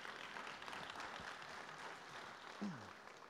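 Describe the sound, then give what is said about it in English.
A church audience on a Sunday claps together in a dense, steady wash of many hands, loud and continuous for several seconds, with no voices rising above it. “Like, we're clapping because God has been faithful.”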